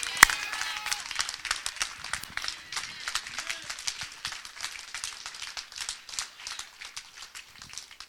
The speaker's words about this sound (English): If you believe it, give the Lord a clap offering today.